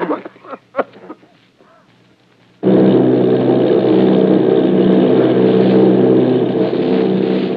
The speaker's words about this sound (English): Army bombing plane, V-843 off Bayonne, New Jersey. Lieutenant Vogt commanding 8 bombers, reporting to Commander Fairfax Langham Field.